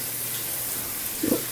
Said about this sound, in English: Well, I'm in the shower, and I just realized that I'm out of shampoo. Can you have some shampoo delivered to me here in the shower before my hot water runs out?